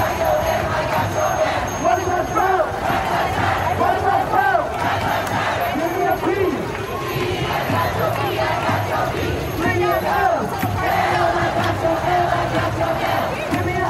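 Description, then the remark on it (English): A large protest crowd at a federal courthouse fills the space with dense, continuous voices, singing, shouting and chanting together with bursts of cheering, as people dance and mothers dressed in yellow form a kick line; loud throughout with no pauses. “For 2 hours, the crowd sang and danced, yellow-clad moms forming a kick line where the fence had stood only a day earlier.”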